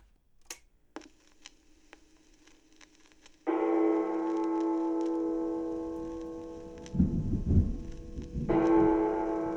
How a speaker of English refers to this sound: Wow, that was real thunder. This is pretty sick, actually.